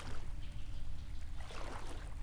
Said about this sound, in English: It's quiet, just the soft splash of the two of us walking through the water.